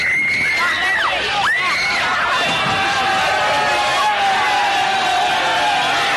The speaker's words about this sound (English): Hurtling out the door then when the police opened it to put 2 more in, and you heard the screams of the girls in the crowd.